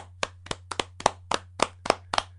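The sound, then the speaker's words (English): A brief round of applause for Artie Lang: about nine crisp, evenly spaced hand claps in a steady rhythm, fairly loud, over a low constant hum, with no voices. “A moment of a moment of applause for Artie Lang.”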